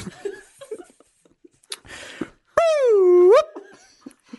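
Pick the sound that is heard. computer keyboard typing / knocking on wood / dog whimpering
dog whimpering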